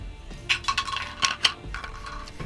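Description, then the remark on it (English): Purple dice are rerolled, rattling and tumbling across a hard tabletop in a quick burst of sharp clicks that scatter and then settle, with no voices. “And we're going to not roll that dice again. We're going to go with the purple dice.”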